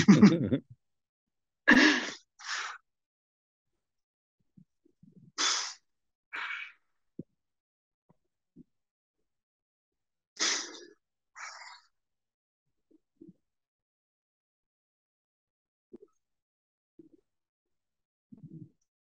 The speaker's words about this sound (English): This goes a bit quiet for the podcast people, but you'll hear my weird breathing.